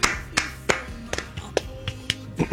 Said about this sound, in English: We clap sometimes.